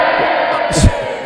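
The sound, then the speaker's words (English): A muffled crowd of many people clapping, roaring and cheering in a dense, continuous wash of noise, with one louder shout-like burst near the end of the brief stretch. “Was that like a muffled crowd?”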